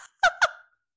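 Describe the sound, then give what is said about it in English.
A voice imitates the squeak of a person's eye being rubbed: two quick, high, nasal squeaks in succession, fairly loud, with a brief fading tail after the second and no talk. “He has a squeaky eye. Have you ever heard a squeaky eye?”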